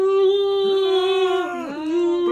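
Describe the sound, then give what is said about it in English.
A voice imitates a dinosaur roar: one loud, sustained, strongly pitched cry held for over two seconds, wavering slightly, with no speech around it. “Yeah, it's like charging at them, and he's just standing there roaring at it.”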